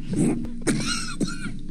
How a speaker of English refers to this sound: I'm working on this trademark cough. What do you think?